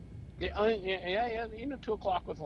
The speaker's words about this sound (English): Sorry. Kind of boring you, dude. I mean, yawning right in my ear. It's pretty rude, dude.